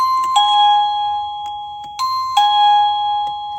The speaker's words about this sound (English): The chime I hear is from a doorbell I found on the side of the road back in 2019.